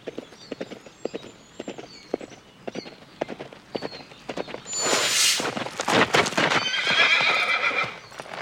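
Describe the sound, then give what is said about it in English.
Steady hooves clip-clop at a walking pace for several seconds, then a horse ridden by Q lets out a loud neigh and whinny as the footfalls continue underneath. “Now Q is there on a horse.”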